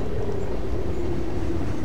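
A train rolls steadily along an open stretch of track under thick cloud cover, a continuous low rumble with a faint humming tone riding on top, even in loudness throughout and with no voices.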